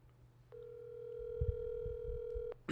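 A single two-second ring of an outgoing phone call: a steady electronic ringback tone, clear and fairly loud over low background rumble and a few soft thumps, ending with a brief noise.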